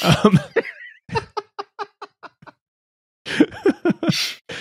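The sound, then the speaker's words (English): Someone laughs while blowing their nose up close: a run of rhythmic, fading snorty laugh bursts, a short pause, then loud, breathy honking gusts tangled with more laughter. “I'm going to have to leave you blowing your nose on the track now because you laughing while blowing your nose was really funny.”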